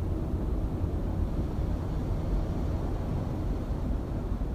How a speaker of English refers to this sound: So she sent in the sound of the Pacific Ocean as heard from the hotel room on Waikiki Beach, which is a place that has meant a lot to my family and I.